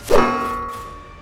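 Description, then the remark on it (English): A hammer strikes the mighty skull of the giant serpent Jormungandr once with a sharp metallic ping, leaving a clear ringing tone that slowly fades over about a second. No voices. “The hammer pings off Jormungandr's mighty skull.”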